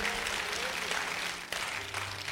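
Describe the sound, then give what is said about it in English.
A crowd claps steadily for God's word, a dense, continuous patter of many hands that holds an even level throughout, with a faint low sustained tone underneath. “Clap those hands for God's words.”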